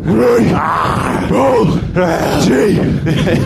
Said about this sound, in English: I was, lions roar up close is an amazing thing, isn't it? It's so beefy. It's quite scary.